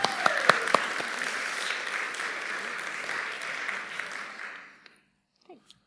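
A short round of audience applause for a recently married couple back from Australia: dense, steady clapping with a few sharp individual claps at the start, holding for about four seconds before tapering off into near silence.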